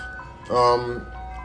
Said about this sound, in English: Hold on one second. As this ice cream truck goes by.